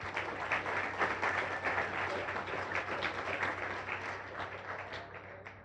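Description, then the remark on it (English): A Rotary club audience applauds steadily for the evening's sponsors and program participants, many hands clapping in a dense, sustained wash of sound that holds level for several seconds before easing slightly at the end. No one speaks over it. “Let's give them all our hand of applause.”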